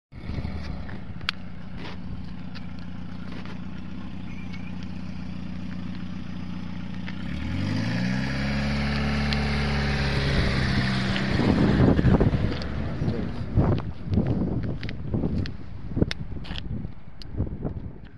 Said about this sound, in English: I'm going to give this guy who is pulling this trailer with his car through anti-tank mine area, I'm going to give him some props.